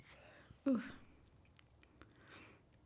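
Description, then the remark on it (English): A single short, low, croaky burp bursts out, then fades into quiet breathy mouth and throat noises with a few soft clicks. “oh, this burp is like stuck in my throat.”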